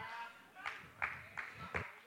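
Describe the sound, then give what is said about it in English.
Three scattered, sharp hand claps from an audience, spaced unevenly about a third of a second apart, fairly soft against a low background murmur. “Thanks for the three claps.”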